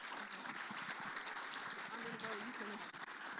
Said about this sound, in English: Please give a good round of applause.